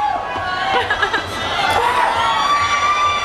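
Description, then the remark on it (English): A large audience of about 1,500 children screams and shouts all at once before a story reading, a dense, continuous roar of high-pitched voices at steady loudness for a few seconds. “No, you can't scream. If you scream, I can't read the book, all right?”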